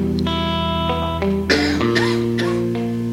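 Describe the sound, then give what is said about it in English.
A couple of sharp coughs break in about midway, heard over steady sustained musical tones that continue underneath throughout. “Sorry about the coughs.”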